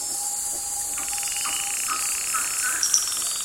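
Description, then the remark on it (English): A dense nighttime chorus of frogs calling in the rainforest of the Marotandrano Special Reserve, Madagascar, with a steady high insect-like trill and short repeated chirps and pulses rising out of the continuous buzz; no voices. “In the still of the night, frogs, owls, and lemurs were anything but quiet as Daniel Grossman recorded their sounds in the Marotandrano Special Reserve.”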